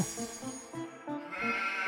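A sheep bleats loudly in a wavering, quavering call that breaks into several quick pulses and continues for about two seconds, with no talking.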